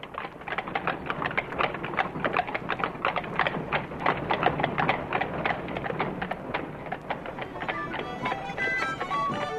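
Dray horse hooves in Dublin clip-clopping in a steady, rapid rhythm of sharp knocks on a hard surface, with brighter tones creeping in near the end.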